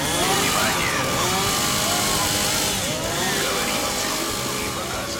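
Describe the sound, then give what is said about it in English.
A 12-ton monster truck's engine roars and revs loudly and continuously as the trucks perform, its pitch repeatedly climbing and dropping in overlapping surges, with a dense, gritty mechanical rumble that never lets up. “Now they're on the path of 12-ton monster trucks performing every Sunday night!”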